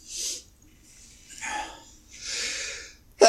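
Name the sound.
loud human sneeze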